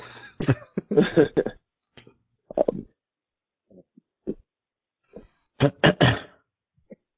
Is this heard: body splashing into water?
no